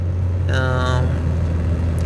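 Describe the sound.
Steady low rumble of a car interior while driving, with no radio playing, a constant droning hum throughout, with a brief voiced sound from someone inside partway through.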